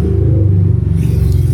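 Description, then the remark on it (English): A loud, steady low engine rumble with pulsing harmonics from a motorcycle passing outside, heard through open windows, continuing throughout with no speech. “You hear that motorcycle outside?”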